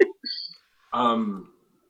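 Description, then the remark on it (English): A single stifled burp, hidden under the breath and fairly quiet, comes out as a short, low, throaty gulp after a faint breathy sound, with no talking around it. “What have you been doing besides hiding burps under your breath?”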